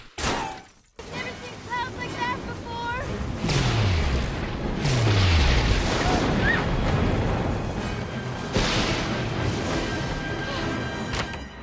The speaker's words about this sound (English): Can you believe that thunder? That storm is so fierce. Never seen anything like it.